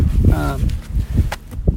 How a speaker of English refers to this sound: Sorry, we've just got stuff blowing everywhere. No, that's all right. It's a windy old day.